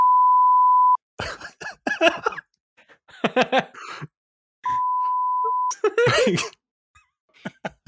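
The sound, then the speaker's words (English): Two loud, steady censor bleeps, each lasting about a second, cut in at the start and midway, with bursts of laughter and vocal noises between and after them. “put that in the timestamp so we can beep that.”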